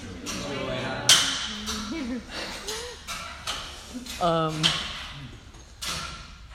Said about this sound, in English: And the weird clinking you hear is the radiators in the church basement.